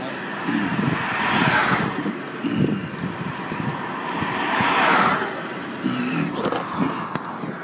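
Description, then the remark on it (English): A car drives along with a steady engine and road rumble, heard from inside the car, the noise swelling twice as it picks up speed before settling back to a constant drone. “Plain clothes, unmarked Garda car, recording a piece of audio in the car.”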